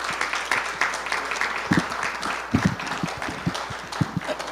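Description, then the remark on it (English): A crowd applauds the men for their hard work, steadily for several seconds, a dense wash of many hands clapping at once with a few sharper claps standing out. “If you ladies have it in you, if you can just give a hand of applause for the men and for their hard work.”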